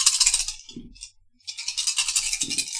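Dice rattle and clatter loudly in two bursts separated by a brief pause, with soft thuds of them tumbling onto a table during a tabletop game's combat roll, and no talking.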